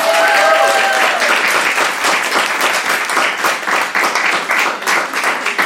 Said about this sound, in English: but let's give them a clap anyway.